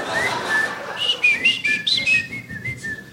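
A man in glasses whistles in an odd, warbling way: a quick string of short chirpy notes that rise and fall in pitch, fairly loud with no talking.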